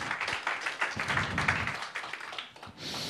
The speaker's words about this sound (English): God, if you believe that this morning, if you could clap your hands, and you may be seated.